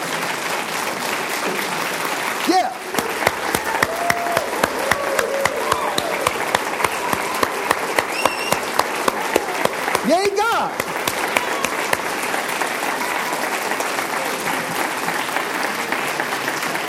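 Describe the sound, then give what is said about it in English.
An audience bursts into sustained, dense applause to God for several seconds, with scattered cheers and whoops rising above the steady clapping and a few shouted voices mixed in. “Wouldn't it be cool if someday, I realize we probably wouldn't do it, to be with a group of people who are so excited about God that when the Bible says, on your feet now, applaud God, we actually did that.”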